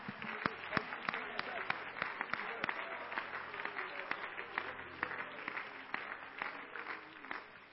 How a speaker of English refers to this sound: In Jesus' name, would you clap your hands and give the Lord a great big shout of praise?